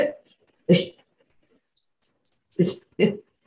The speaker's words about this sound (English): Well, just kind of cough, get it over with.